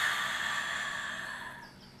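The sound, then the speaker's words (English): A single long, airy exhale after a deep breath in, a steady whooshing release that gradually softens and fades over about two seconds, with no talking. “And let's take a nice deep breath in, breathing in that I can do it attitude, and release.”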